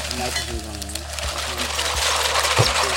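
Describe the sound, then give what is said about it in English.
Steady, loud hiss and sizzle of liquid nitrogen boiling in a cocktail shaker with green herb leaves, punctuated by four dull, evenly spaced thumps of a standard cocktail muddler crushing the herbs, with faint voices murmuring underneath. “Okay, so what he's doing, he's poured the liquid nitrogen into the cocktail shaker with the green leaves, and he's muddling it, you know, with a standard cocktail muddler.”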